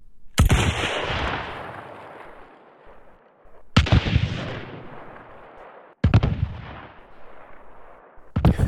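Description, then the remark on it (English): Four loud, booming shotgun blasts from a video game, fired a few seconds apart, each with a sharp crack and a long rumbling tail that fades before the next shot. “This is the shotgun. So I think this one, you hear it. It sounds like a shotgun.”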